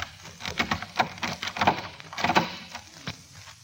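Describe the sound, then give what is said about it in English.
A key scrapes into a lock and turns to unlock a door. The sound effect is meant to suggest the film Key Largo. It gives a run of sharp, irregular metallic clicks and rattles over a few seconds, moderately loud, with no voices. “Key Largo, because of the key put in the lock and unlocking the door.”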